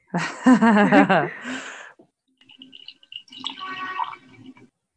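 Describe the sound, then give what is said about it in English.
A brief burst of vocal noise, like a drawn-out exclamation, gives way to a soft trickle of tea being poured into a cup for a couple of seconds. “But does anyone have a cup of tea to pour?”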